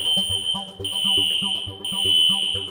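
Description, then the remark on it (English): A fire alarm blares with a loud, piercing high-pitched tone, sounding in steady repeating bursts about a second apart, while muffled voices murmur faintly underneath. “Literally, I wasn't going to speak with him, except the fire alarm went off.”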